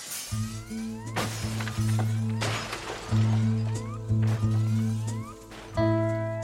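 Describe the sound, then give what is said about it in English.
A man running down a hallway smashes glass jewel cases with a crowbar: about six loud shattering crashes at irregular intervals over a steady low droning tone, with tinkling debris between impacts. “Great meeting you, cuz, he said, swinging his crowbar. Take care now. And then he was running down the hallway away from me, smashing jewel cases and everything else he could reach.”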